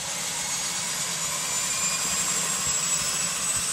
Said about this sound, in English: Jumping in and starting her up, we'll get going on the step. Right engine is turning.